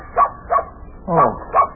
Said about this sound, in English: Oh, it's only your dog, Bunny.